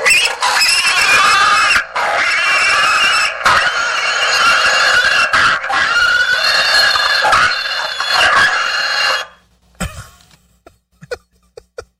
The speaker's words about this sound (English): And then your yellow wire comes from the horn to go to one side of the button, which is included. Then you simply just run another wire with 12 volts to the outside of the button, and you're good to go. So this is our pig squealing car horn.